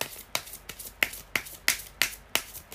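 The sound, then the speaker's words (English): Tarot cards being shuffled by hand, a steady run of about eight crisp, papery slaps at an even rhythm, with no talking over them. “Okay, I'm still shuffling, guys.”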